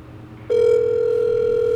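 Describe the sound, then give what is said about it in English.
A steady electronic phone ringing tone from a call on speakerphone starts suddenly after a brief pause and holds evenly, slightly tinny, with faint hiss underneath and no voices. “This is what Spencer's phone responds with if he doesn't answer”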